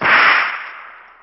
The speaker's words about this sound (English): Like a striking snake, that rawhide lash in Chet's right hand flew across the room and bit into Lafitte's wrist.